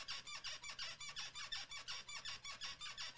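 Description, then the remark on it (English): A chair squeaks rapidly and rhythmically, a steady run of about fifteen high, creaky squeals in three seconds, loud, with no talking over it. “Who's fucking the chair?”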